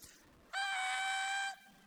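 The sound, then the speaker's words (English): An adult voice imitates an 18-month-old boy's happy scream: one loud, shrill, steady-pitched shriek lasting about a second, bursting in suddenly and cutting off just as abruptly, with no other talking. “every, it's like 30 seconds, the 18-month-year-old just screams at the top of his lungs.”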